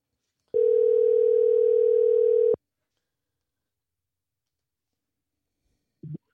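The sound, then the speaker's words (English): A telephone dial tone hums steadily and loudly for about two seconds while a phone call is being placed, then cuts off abruptly, followed by a long silence and a couple of faint clicks near the end. “Let's just happen when I try to get him on the phone.”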